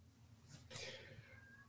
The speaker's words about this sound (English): Is your cat screaming at you, by the way? I think so. I think my cat's standing right outside this window. Yeah, he's right there. Look at this. Oh, kitty cat.